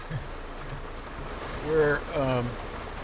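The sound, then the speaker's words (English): Steady heavy rain hisses throughout at a parking lot at Matador Beach in Malibu, a dense wash of noise, while a man's voice speaks briefly over it near the end. “There's one other car in the parking lot here, and it's raining like hell.”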